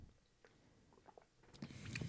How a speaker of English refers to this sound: But I tend to drink a lot with each gulp. So let's take a couple gulps of this thing.